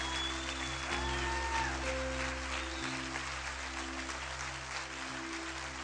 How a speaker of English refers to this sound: would you please give him a hand as he comes today?